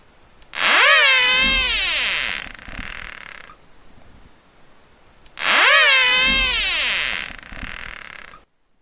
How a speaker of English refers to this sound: In a laboratory experiment, birds responded to caterpillar whistles by jumping away and abandoning their predation attempts.